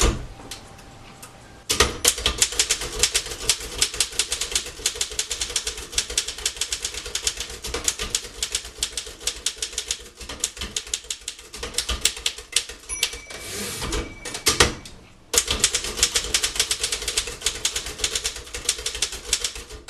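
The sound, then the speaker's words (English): Rapid clattering of an old 1960s manual typewriter, keys striking in dense irregular bursts with a couple of brief pauses, and no voices. “And some of that stuff, yeah, I'm keeping, because it's important to me and it's important history, but some of it just doesn't make sense for me to keep, like an old 1960s typewriter.”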